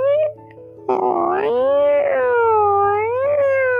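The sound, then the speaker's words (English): A person vocally imitates a female cat screaming after mating with a male: one loud, drawn-out yowl that wavers up and down in pitch for about three seconds, with no other talking. “So there's a reason why your cat is screaming.”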